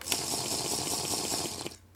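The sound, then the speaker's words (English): Someone takes sips of water, a steady run of quick, rhythmic wet gulps and slurps over a hissy background, stopping abruptly near the end. No one speaks. “Sip of water, please.”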